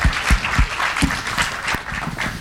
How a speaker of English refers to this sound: And Brian Selznick again. You can applaud again for Brian Selznick.